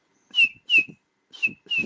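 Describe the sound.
A person whistles four short, bright, slightly downslurred notes in two pairs, fairly loud, with breathy puffs under each note, imitating the call of a scarlet-chested sunbird.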